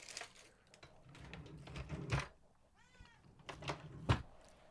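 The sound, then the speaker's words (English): A cat gives a single short meow midway through, amid scattered clicks and rustling handling noises. “You're needed, young cat.”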